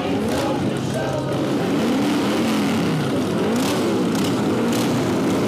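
vehicle, motorcycle engines revving

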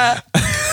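human body sound, cough

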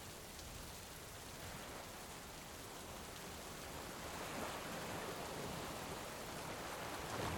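nature, storm with heavy rain

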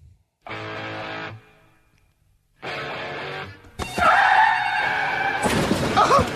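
sound effect, car crash sound effect

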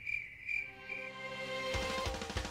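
insect, crickets chirping

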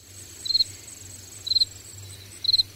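insect, crickets chirping

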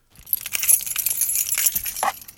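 household object, bunch of keys jangling

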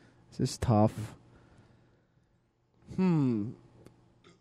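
human body sound, burp

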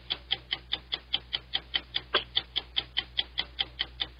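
sound effect, game clock ticking

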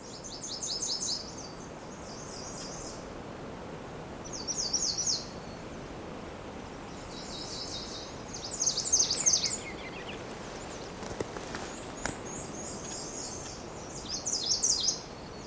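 bird, birdsong

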